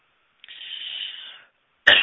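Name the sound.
cough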